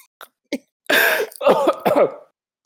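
Two quick, soft throat clears, then a harsh, loud cough burst followed by a run of rough, raspy coughing and hacking, close to the mic with no talking.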